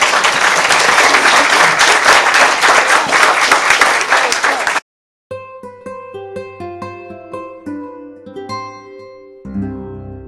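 An audience applauds its panelists with loud, dense applause lasting about five seconds, which then cuts off abruptly; after a brief silence, gentle piano music begins.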